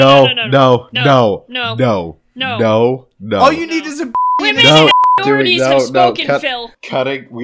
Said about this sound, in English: There's going to be a lot of beeps this episode, I'm thinking.